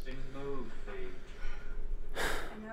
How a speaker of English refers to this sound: I'm just kind of like breathing. Like, it's weird because I exhale and it catches it.